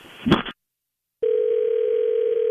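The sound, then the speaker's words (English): A brief clattering click on the line as a phone call is disconnected, a moment of silence, then a steady, unbroken telephone dial tone that hums at a single even pitch for over a second before cutting off. “Hello? Yeah, I think we were disconnected.”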